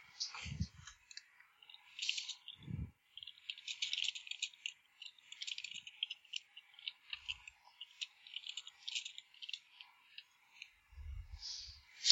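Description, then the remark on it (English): Ten dice rattling and clattering across a hard surface, a long stretch of dense clicks with a few soft thumps, moderately quiet, with no talking. “you can go ahead and roll 10 dice for me.”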